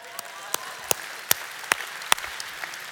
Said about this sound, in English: You did. You need to stand up. We'll give you some applause on that thing.